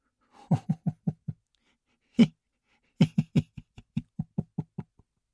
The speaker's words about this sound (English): Then he closed the door and left the hut to go and enjoy the international break.